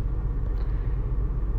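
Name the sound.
car engine idling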